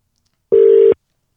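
A single steady electronic telephone dialing tone sounds once for under half a second, loud, with silence before and after and no voices, as a phone is dialed to call a guest on a radio show.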